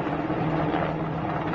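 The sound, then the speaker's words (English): A helicopter used by the Taliban in Kabul drones steadily, its engine and rotor noise forming a loud, continuous rumbling whine with no breaks and no voices. “There's video that emerged from Kabul yesterday of them using our helicopters to excellent effect, namely to take their enemies and tie them to the bottom of the helicopters and then hang them, Scarface style.”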